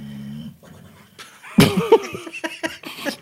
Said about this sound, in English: my dog snoring. He's having a dream of his own.